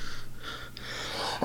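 A single sneeze: a breathy intake of air builds for about a second, then ends in one sharp, explosive burst, with no talking.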